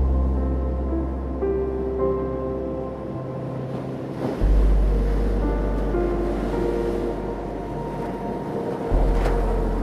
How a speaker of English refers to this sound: Feel the welcoming water gently lap against your body, cradling you and protecting you as you move up and down, up and down with the soothing rhythm